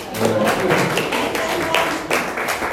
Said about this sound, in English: You can clap if you want.